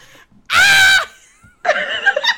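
A person in another room lets out a loud, high-pitched scream lasting about half a second, followed after a brief pause by a longer, wavering shriek or yelling burst.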